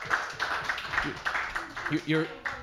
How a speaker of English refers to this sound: Well, look, round of applause for the Ukrainians.